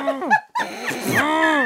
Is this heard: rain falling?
no